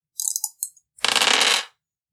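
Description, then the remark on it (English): A player in a tabletop game rolls dice to defend, two plus two more for charm: a few quick, light rattles of dice being shaken, then a dense burst of clattering as they tumble across a hard surface, fairly loud, with no talking. “Well, no, I'll roll 2 and then 2 for charm.”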